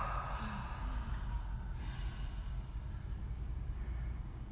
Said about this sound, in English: Fill up top, then add the ribs. Expand, expand, exhale through open mouth, letting go with sound.